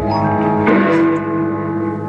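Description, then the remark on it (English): A single deep church bell on 53rd Street strikes once for one o'clock, loud, its rich metallic tone ringing on and humming steadily with no voices present. “Then the bell struck 1.”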